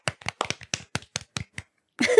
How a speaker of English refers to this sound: Golf claps. Golf claps.